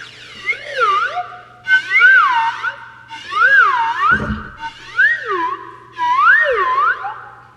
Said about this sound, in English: That is a new member of the Todd Glass Show. It's called Mr. Happy, and this is a slide whistle to George Carlin. We do is real. It's not a sound effect.